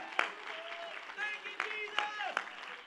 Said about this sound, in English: One more time, would you clap your hands, all you people, shout unto God with a voice of triumph. Hallelujah! Thank you, Jesus!